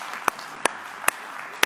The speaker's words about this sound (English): Good morning again, everybody. Three rounds of applause this morning.